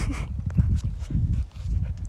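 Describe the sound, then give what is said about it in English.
A dog moving around, its paws and body making irregular soft thumps and scuffling bumps over about two seconds, with no one talking. “Oh, hey, you came back. Hold on, my dog's right here.”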